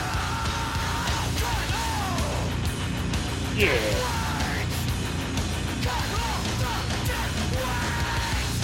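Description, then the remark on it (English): Harsh screamed vocals with a heavy distortion effect ride over a dense, loud band mix in a song, the shouts rising and falling in strained bursts, with a brief spoken word from a listener. “But there's a lot of distortion effect on there.”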